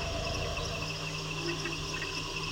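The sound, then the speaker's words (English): A dense, continuous wash of insect chirping and buzzing in the Amazon jungle at night, heard from up in a tree, steady and loud like white noise, with layered high-pitched trills and a low hum underneath. No voices. “Oh, just this cacophony of sounds. It's just this loud, sort of almost white noise.”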